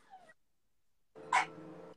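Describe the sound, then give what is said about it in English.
A dog whimpers softly: a brief high, falling whine, a short pause, then a longer whimpering sound with a sharper peak near the end. The dog is quiet, and no one speaks. “these going crazy. Charlie. Okay. Get the dog”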